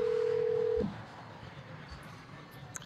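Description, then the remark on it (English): A loud, steady electronic phone tone sounds for under a second as a call is placed, then cuts off abruptly, leaving faint low background noise. “Let's see if he answers.”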